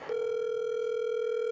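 A steady, unbroken telephone dial tone hums at a constant pitch, clear, with no voices over it, starting abruptly after a brief click, as a phone call is being placed.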